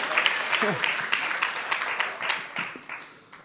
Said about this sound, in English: I'm so glad you're clapping for the Holy Spirit, right? You're not clapping for dust. Yeah.